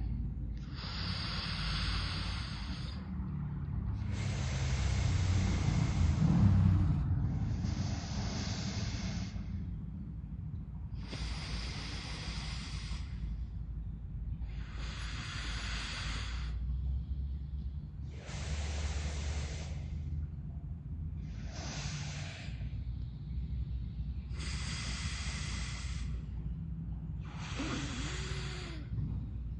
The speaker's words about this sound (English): inhaling in through your left. Plug, open your right. Inhale through right. Plug, open to the left. Let's do a few rounds of this together. Yeah, and as you go back and forth with your breath, make sure it's an effortless breathing.